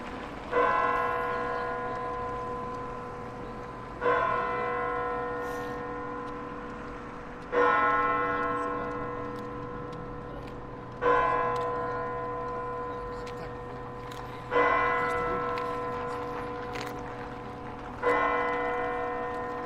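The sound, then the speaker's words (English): A church bell of Hallgrímskirkja tolls slowly and steadily, six resonant strikes about three and a half seconds apart, each ringing out with a long humming decay over a faint outdoor background. “From there, I walked up the road, stopping in the kiosk, Drekin, or Dragon, before heading up to the church, Hallgrímskirkja, 5 seconds too late, as the bells began chiming as I walked across the street.”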